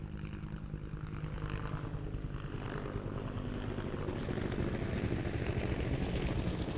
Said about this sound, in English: So here is the helicopter.